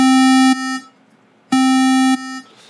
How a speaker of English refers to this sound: So sometimes you have a sound that is, let's just say, a square wave or something, right? And so I'm just going to turn this up. This is a square wave.